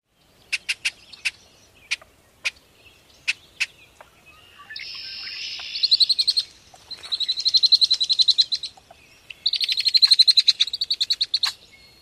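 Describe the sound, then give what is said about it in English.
Red-winged blackbirds, male and female, duet: a run of sharp, separate chip notes, then loud, close buzzy trills in three bursts with no talking. “If you listen carefully in this next track, you can hear the male start to sing and the female join in as a type of duet.”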